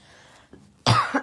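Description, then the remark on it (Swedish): A single loud cough bursts out after a brief quiet moment, followed by a short second catch of breath or smaller cough at the very end. “Ursäkta, jag var tvungen att hosta.”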